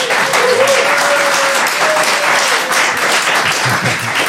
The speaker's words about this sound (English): Nice. Welcome to a round of applause, everybody.